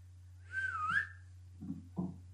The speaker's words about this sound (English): No, she'll be right out here. I'm whistling.